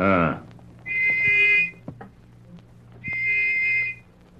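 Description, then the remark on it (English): A small brass whistle, taken from a pocket and blown at frequent intervals, gives two shrill, steady blasts, each lasting under a second, separated by a short pause. A voice briefly speaks just before the first blast, with a faint hum underneath. “took the little brass whistle which he had received from the dying government agent from his pocket”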